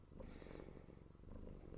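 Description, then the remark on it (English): A small cat purrs steadily right at a microphone, a low rumbling buzz with a soft rhythmic pulse that continues throughout without any talking. “What's it like being a cat?”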